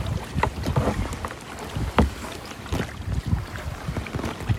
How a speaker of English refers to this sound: We're just kayaking through the fjords, and it is beautiful. Just mountainous terrain that surrounds us, this beautiful still water, and waterfalls everywhere.